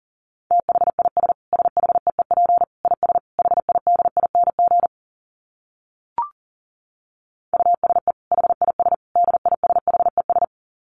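Rapid Morse code beeps sent at 40 words per minute, at a steady mid pitch: fast bursts of short and long tones in two runs separated by a pause with a single brief click, no voices present.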